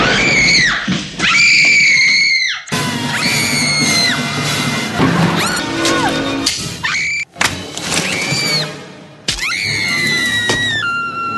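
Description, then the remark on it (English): Actress Kim Basinger's high, piercing screams from the film Batman, where she screams on seeing the Joker, repeat in several loud, abrupt bursts, each cut sharply into the next, with crashes and clatter beneath some of them. “It's every time you turn around, she sees the Joker. She screams.”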